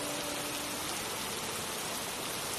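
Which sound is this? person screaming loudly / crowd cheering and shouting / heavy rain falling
heavy rain falling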